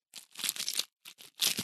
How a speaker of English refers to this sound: Now I'm not opening anything. I'm just wrestling with the paper. But that's a good sound. Yeah, that's what it sounds like.